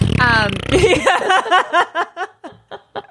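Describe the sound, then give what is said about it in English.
A loud vocal imitation of a fart: a low sputtering blurt that breaks into a quick series of rhythmic, laugh-like bursts and fades out. “Insert fart noise here.”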